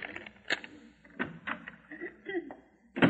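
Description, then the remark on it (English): A key rattles and clicks in a door lock with a few sharp metallic snaps, followed by a louder clunk as the door is pulled open. “Oh, here's the key to the door.”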